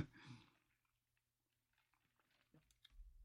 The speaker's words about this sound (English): you guys, let me take a sip. I'm losing my voice.